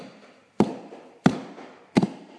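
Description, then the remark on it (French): Three sharp, evenly spaced taps ring out from the basement of a house over a faint low rumble, each a crisp knock with a short decaying tail, about two-thirds of a second apart. “Soudainement, des bruits de tapements retentirent du sous-sol.”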